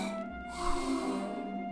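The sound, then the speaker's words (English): A single drawn-out snore, a rough, rattling inhale with a low rumble and breathy hiss that swells and then trails off. No one speaks. “People don't snore in eternal slumber!”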